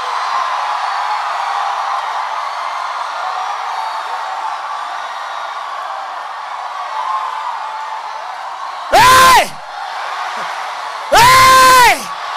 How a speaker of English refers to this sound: No, not like that. Somebody shout. Come on. You don't know what you're doing to hell. You don't know what you're doing to your finances. You don't know what you're doing to your health. You don't know what you're doing to your family. Scream.